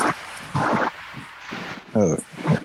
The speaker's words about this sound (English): I hear my dog in the other room. He's going crazy right now.